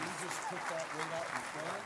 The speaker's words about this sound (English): Give the Lord a clap offering one more time.